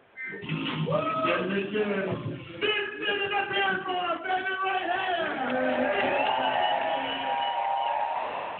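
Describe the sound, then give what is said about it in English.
A live audience at a live action show at the Phil Danner Community Center yells and cheers steadily for several seconds, many overlapping voices rising and falling in pitch, with no single speaker standing out above the din. “I want all you all on your feet. I want you yelling and screaming.”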